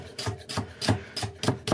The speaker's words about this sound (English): So this does take a little bit of time. You just got to chop all the rhubarb up into, you know, it doesn't have to be paper thin or anything, but you want to get it fairly fine.